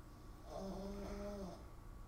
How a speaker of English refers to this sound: The dog snoring. I know. I hate it. It's actually driving me in a little crazy right now. Okay. Everybody likes the dog snoring, apparently.